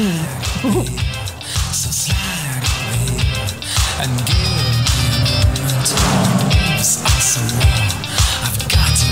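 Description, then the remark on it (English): In a TV advert, a car whizzing around revs and roars continuously as its tires squeal and skid through repeated slides, loud, with the engine pitch rising and falling throughout. “It's a TV advert of a car whizzing around and slide, and the car just keeps sliding, and then it's really tastefully done.”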